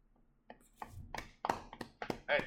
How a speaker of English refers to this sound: I can't really clap. People can't see I have my thumb all wrapped up, but I'm trying to clap as best as I can.